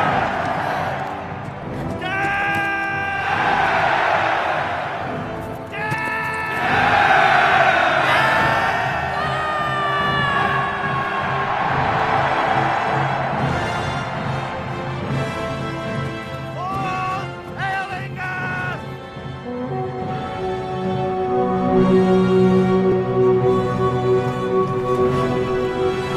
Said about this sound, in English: There's this big epic charge. They all cheer. It's incredible.